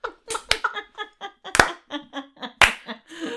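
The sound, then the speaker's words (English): Three sharp, loud claps about a second apart form a slow, deliberate clap, with short voiced vocal sounds repeating steadily between them. “Anytime I slow clap now, I'm just going to think of a sack.”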